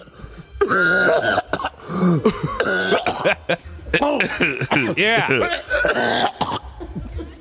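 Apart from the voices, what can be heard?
heavy coughing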